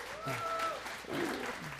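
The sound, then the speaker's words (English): An audience breaks into steady applause, a dense wash of many hands clapping at once with a few voices calling out over it, holding at an even loudness throughout. “Yep, one claps, everybody claps.”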